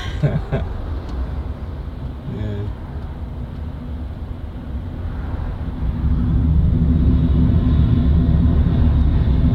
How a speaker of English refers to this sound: What kind of plane is that? Is that a citation? Actually hard to see from here. That could have been a type of citation jet.